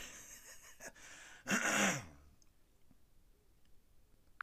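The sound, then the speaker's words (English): A single harsh throat clearing, with a rough, gravelly burst after some breathy noise, followed by quiet room tone and a faint click at the end. “Let me clear my throat.”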